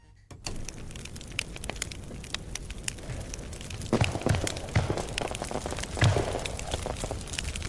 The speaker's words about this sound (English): you've caught me this week enjoying a nice hearty bonfire of last year's FIFA and Pro Evolution games